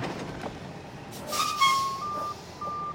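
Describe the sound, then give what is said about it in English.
A garbage truck rumbles steadily outside a room while a high, piercing reversing beep sounds in long, evenly spaced pulses over the engine noise. No one speaks. “yelling at the trash truck that is literally always outside of my room while we're recording.”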